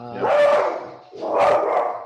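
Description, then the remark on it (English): A dog barks twice, each bark drawn out and a little whiny, with a short pause between them and no one talking. “Yeah, someone's dog just says it.”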